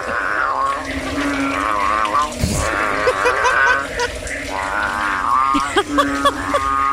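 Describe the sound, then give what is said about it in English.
Two bullfrogs fighting or mating: a steady, loud mass of overlapping, wavering croaks and warbling tones that runs through the whole stretch, with a brief low thump partway in. “Bullfrogs are fighting. You hear that?”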